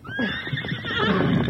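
A horse lets out a loud whinny with a rising, wavering pitch, accompanied by some shuffling hoof sounds underneath.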